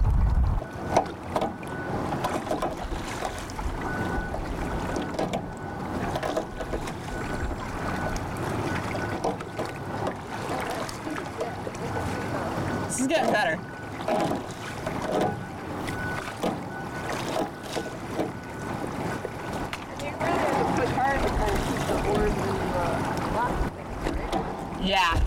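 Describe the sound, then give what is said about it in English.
Oars dip deep and pull through water as a small boat is rowed, steady splashing strokes over constant wind buffeting and lapping water, with faint voices now and then. “if you can look at my oar for a sec, is your oars are going pretty deep under the water.”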